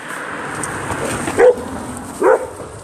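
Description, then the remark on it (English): Two sharp dog barks, spaced almost a second apart, stand out clearly against a steady low background hum. No one speaks. “I think he was saying he wasn't taking it either, when you heard that barking.”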